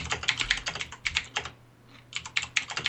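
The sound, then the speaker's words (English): Rapid, crisp clacking of keys on a mechanical keyboard, in quick irregular bursts with a brief pause midway before the typing resumes. “Hey, we got a little typing audio going on there. Yeah, that's John's mechanical keyboard.”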